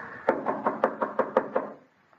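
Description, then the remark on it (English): A series of about eight firm knocks on the wooden door of a house in a quick, steady rhythm, clear, then silence. “Oh, it was out of order when I was here. I had to knock.”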